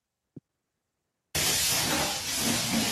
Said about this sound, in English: Wow, is someone spray cleaning the floor? Ah, not the floor. Oh, they're making like a cat shape out of it.